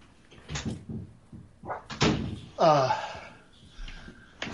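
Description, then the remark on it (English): A dog at home barks at an unfamiliar visitor in a few sharp, loud bursts, one ending in a drawn-out whining yelp, with a door-like thump mixed in and brief quiet gaps between. “Hold on, my dog is going nuts.”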